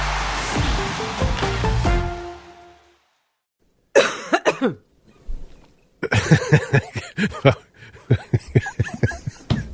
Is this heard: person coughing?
yes